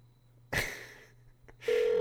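A telephone line clicks and hisses, then a steady electronic ringing tone starts and holds, clear and fairly loud, as a call to McDonald's after midnight rings with no one picking up.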